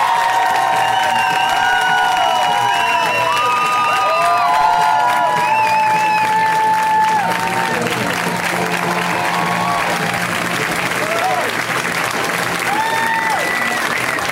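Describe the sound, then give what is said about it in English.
A large comedy-show audience breaks into loud, sustained applause for a comic being introduced, with cheers, shouts and whoops rising over steady clapping for the whole stretch before easing slightly toward the end. “ladies and gentlemen, please, a round of applause for Mr. Patton Oswalt”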